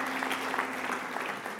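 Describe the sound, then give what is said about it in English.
An audience applauds the worship team steadily, with dense overlapping hand claps at a moderate level for a couple of seconds without pause. “How about giving a hand clap for the worship team?”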